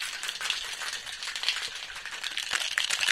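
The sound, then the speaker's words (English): A cocktail shaker holding ice and a drink with egg white and lemon juice is shaken hard to emulsify the ingredients. Ice rattles rapidly inside in a dense, continuous clatter of bright, metallic hits that holds steady for the whole stretch with no voices. “So what we're really trying to do is I'm shaking like crazy just to get all this to blend together.”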